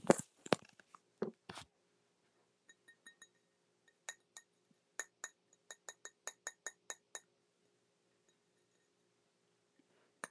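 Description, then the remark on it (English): Crisp clicking taps and scrapes on tempered glass: a few scrapes at first, then a steady run of bright, evenly spaced ticks, fairly quiet, with no voices. “Now we have Tempe glass.”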